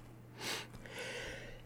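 A single short, explosive sneeze bursts out as a sharp, breathy blast, followed by a quieter hissing exhale over a low, steady background hum.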